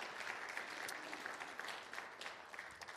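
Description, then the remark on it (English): A crowd applauds steadily, many hands clapping in a dense, even wash of sharp claps that holds at a fairly constant level throughout, with no voices rising above it. “Give you guys a round of applause.”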